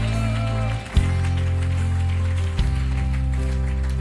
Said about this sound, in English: Come on, stand to your feet, give him a good hand clap if you believe he's a good God.